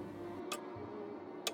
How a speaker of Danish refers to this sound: Han sad nemlig og lyttede til urets tikken.